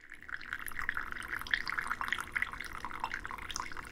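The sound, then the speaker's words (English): A steady stream of coffee is poured from high above in a long pour into a small, handleless finjan cup of Eritrean-Ethiopian design, a continuous bright splashing trickle with tiny bubbling flecks, moderately quiet, with no one speaking. “I have to do it up like this. Lifting it high above higher. The cup. Yes. A long pour.”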